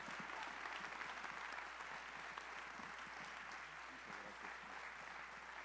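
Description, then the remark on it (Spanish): Sustained, loud applause from a large audience welcoming Luis Harfusch, a dense crackle of many hands clapping at once that holds steady for several seconds without any speech over it. “vamos recibiendo un fuerte, fuerte aplauso a Luis Harfusch.”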